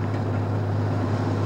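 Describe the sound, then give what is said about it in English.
A voice imitates a tank rolling along, producing a steady, low engine-like rumble with a droning hum that holds constant and fairly loud, with no speech. “Perhaps a little tank rolling along.”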